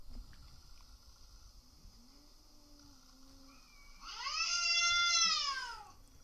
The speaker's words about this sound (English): That's like child screaming. I heard it over 2 years. Yeah, but anyway, at night, you know. Yeah. So... A cat doesn't do that unless it sees another fucking cat.